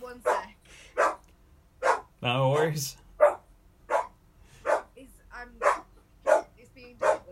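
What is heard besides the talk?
dog barking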